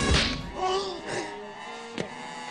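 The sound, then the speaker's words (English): A loud punch sound effect from the Looney Tunes: Back in Action scene where Brendan Fraser's character punches the real Brendan Fraser in the face, with a sharp, whip-like smack at the start, followed by a strained groan and another crisp hit a couple of seconds later. “There's even a scene where Brendan's character punches the real Brendan in the face.”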